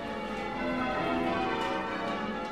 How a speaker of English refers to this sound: Nearly all church bells are made out of a bronze, and that's what gives them their distinctive tone and sound.